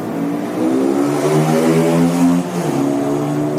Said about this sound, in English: It sounded like you sort of rode away on a motorbike at the end of that, don't you think? Listen, doesn't it sound like he's sort of sitting on a motorbike and he says, right, goodbye, and just drives away on a motorbike?